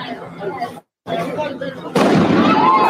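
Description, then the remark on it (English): Voices talk briefly, then a loud burst from a box full of fireworks erupts into a dense, continuous crackling and popping that fills the final second, during a protest in downtown Indianapolis. “Oh, that's a box full of fireworks.”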